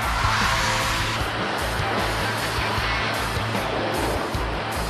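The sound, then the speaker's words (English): A Chinese company's electric car drifts on a wet surface during a Guinness World Record drift of 27.12 miles, a loud, steady roar of tire noise with a low rhythmic throb running underneath for the whole stretch, no voices. “A Chinese car company broke a Guinness World Record when one of its electric cars drifted for 27.12 miles on a wet surface.”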